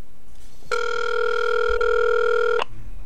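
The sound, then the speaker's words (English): A single long electronic ringback tone of an outgoing telephone call to a strip club, steady and clear for about two seconds, heard alone with faint background noise and no talking. “Let me have that phone here. There we go. Who am I calling?”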